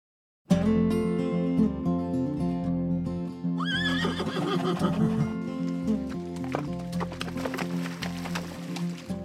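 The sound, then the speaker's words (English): A horse lets out a loud, warbling whinny, its pitch wavering up and down, followed by a scattering of hoof clops on hard ground. “Riding horses is a fun date. Horses are majestic, and riding them is fun, especially on trails you've never been on before.”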